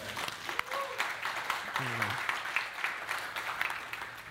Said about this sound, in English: That's a good time to clap, by the way.